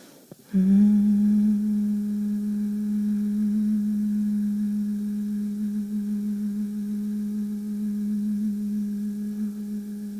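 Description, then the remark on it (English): A single steady human hum begins after a brief breath and holds one low pitch for about ten seconds, clear, with no speech around it; the final hum of a guided humming exercise. “Let your next inhale lead to your final hum.”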